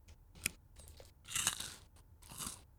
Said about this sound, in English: I shoved the mic directly against my mouth when I was chewing. Real audible journey I took them on. ASMR. It's crispy.